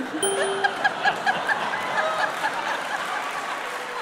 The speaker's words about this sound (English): you don't have to applaud that, for God's sake.